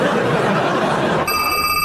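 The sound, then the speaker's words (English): A loud, bright alarm-system bell bursts into steady ringing partway through, cutting in over a constant, rushing wash of noise that fills the first half alone. “My God, the alarm system.”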